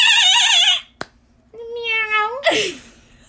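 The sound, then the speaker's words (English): A person imitates a cat's meow twice: first a wavering, drawn-out mew, then after a brief click and a pause, a longer rising one ending in a harsh, falling squawk. Fairly loud. “That when you said making... meow, it reminded me of that kid that licks the ice cream.”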